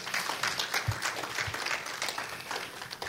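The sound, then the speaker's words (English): A crowd applauds the children steadily, many hands clapping in a dense, continuous patter that holds at a fairly even loudness throughout, with a hint of voices mixed in. “Why don't we give all our kids and Jam and Super Kids a big hand clap, and God bless you.”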